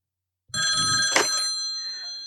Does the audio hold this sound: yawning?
no